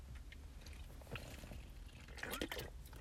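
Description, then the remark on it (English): Someone takes a drink: soft sipping and swallowing noises with a few wet clicks, loudest near the end, faint and without any talking. “Let's take another drink.”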